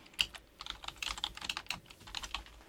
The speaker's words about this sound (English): I can hear you typing on your typewriter.